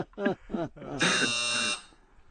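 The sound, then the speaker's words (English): A loud, harsh buzzer blares once for about a second, a flat electronic drone with bright harmonics, following a few moments of talking that continues faintly beneath it. “am I not going to get a buzzer for that Rick Schaefer sarcasm?”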